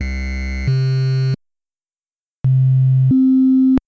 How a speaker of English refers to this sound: Here's an example of the Game Boy trying to play a sine wave, followed by the FDS also trying to play a very similar shaped sine wave.